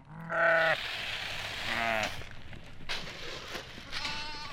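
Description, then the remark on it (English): Several sheep bleat loudly at feeding time as a farmer delivers breakfast to the flock: one long harmonic call followed by shorter overlapping bleats, with rustling and shuffling movement in the background. “On a recent morning, he delivers breakfast to his flock of sheep.”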